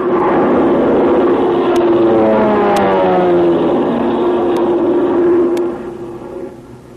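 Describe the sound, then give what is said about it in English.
A loud, droning airplane engine roars steadily overhead, its pitch sliding slowly downward as it passes, then the noise drops off near the end. A few faint ticks sound along the way, and no one speaks. “Well, wonder who's at the controls of the plane.”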